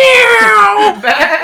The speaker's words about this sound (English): Meow. Nice soundboard.